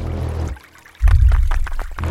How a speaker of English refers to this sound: It's interesting, that's strange. Streams just don't appear, and then the stream is now flowing in the road.